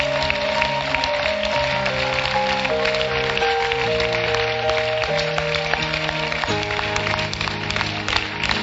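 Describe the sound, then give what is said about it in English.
A crowd applauds continuously, a dense patter of many hands clapping at steady loudness, layered over sustained music chords that shift every second or two. “Sister, you clap.”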